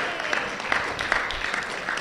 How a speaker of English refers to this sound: Clap hand for Jesus. Clap hand for Jesus.